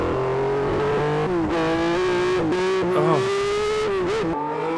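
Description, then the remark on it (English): A race car engine screams at high revs from an onboard camera at Monza, pitch rising and dropping sharply through gear changes and braking, loud and continuous throughout. “Oh, in-car cam.”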